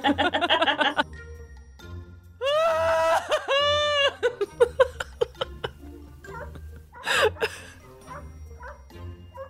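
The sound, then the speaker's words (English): The neighbour's dogs next door howl in long, wavering, high-pitched cries, followed by scattered short yips and barks, with a brief burst of a person's voice at the start. “2 seconds, I've set the dogs off next door.”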